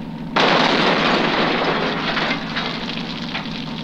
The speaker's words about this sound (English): Well, there's no way he could have survived that explosion.